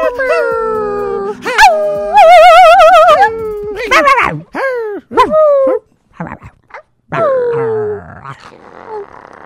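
A dog barks and howls in a string of drawn-out, wavering yowls broken by sharp yelps, loud and insistent, with short pauses between bursts.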